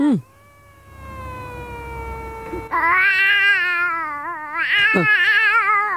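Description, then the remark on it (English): In viral audio, a man's voice imitates a cat's caterwauling: a long, rising yowl gives way to loud, wavering, drawn-out cries that swell and quaver, intense, with no other talk. “This is a guy who's so good at the loud caterwauling, if you will, that he confuses his own cat.”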